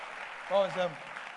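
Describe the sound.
An audience standing on its feet claps as an offering to the Lord, in a dense, continuous wash of applause lasting the whole moment, with a single voice calling out briefly over the clapping.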